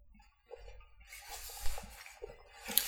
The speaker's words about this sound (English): I was taking a water break.